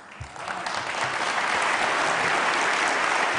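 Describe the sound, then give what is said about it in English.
An audience breaks into applause, the clapping starting with a few hands and quickly swelling into a dense, steady roar of many people clapping that holds for several seconds. “They clap for even said anything good about you.”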